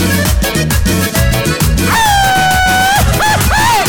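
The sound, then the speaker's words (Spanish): A loud, drawn-out Mexican-style festive shout in the Guanajuato manner rises over lively live band music at Volcán Houston, holding a long high note before breaking into two short, trilling yelps near the end. “¿Y cómo gritan en Guanajuato, compadre? ¿Cómo gritan?”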